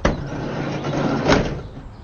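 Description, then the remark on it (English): A woman's van side door slides open along its track as she hops out, starting with a sharp clack and ending in a second thud about a second later. It is fairly loud, with no voices. “Right on cue, two long tan legs hop out of the side door.”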